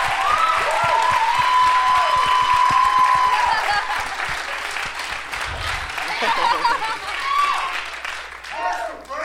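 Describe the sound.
A live crowd applauds loudly for a guest being introduced, with dense, sustained clapping and some cheering, fading slightly toward the end as voices begin to come through.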